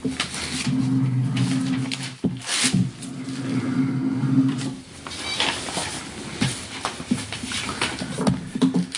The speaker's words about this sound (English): This is my drawing noise. This is my drawing noise. I'm making tiny maps.